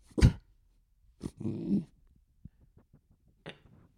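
A dog named Terry sniffs right up against the microphone: a few loud, breathy bursts of air, one longer snuffling stretch, then quiet soft clicks and one more short sniff. No one speaks.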